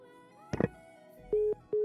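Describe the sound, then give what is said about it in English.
A brief burst of noise, then a steady electronic tone sounding in repeated on-off pulses like a phone busy signal, clear on a troubled phone line during a live call-in, with no talking. “Okay, we're having problems with the phone line.”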